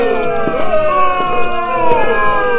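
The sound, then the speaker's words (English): An audience boos in a loud, sustained chorus of overlapping drawn-out voices, the jeering rising and falling in pitch without a break for the whole stretch. “Hey, stop that booing or I'll make a scary face at you.”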